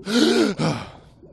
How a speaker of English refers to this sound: I felt a sinking sensation like I was being pulled right back down to the depths. Son of a... I awoke with a startling gasp.